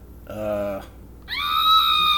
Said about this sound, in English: That's her enemies screaming.